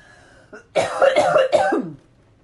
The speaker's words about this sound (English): Again, I'm going to cough. Excuse me.